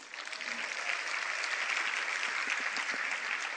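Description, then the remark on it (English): A crowd claps steadily, a dense wash of many hands with no clear rhythm, holding at a fairly even loudness throughout with no voices standing out, as the president of the San Francisco Board of Supervisors, Lyndon Breed, is recognized among the elected officials in the room. “I've got quite a few names to go through here, so you can hold your applause, and I'll ask you to applaud at the end.”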